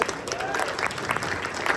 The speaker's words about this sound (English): Round of applause for all these folks.